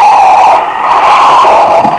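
A car engine runs steadily as the car pulls up to stop, a loud, even drone with a whining tone that holds for a couple of seconds without fading. No voices are heard.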